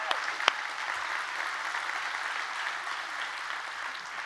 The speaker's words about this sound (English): Come on, let's give the Lord a good hand clap.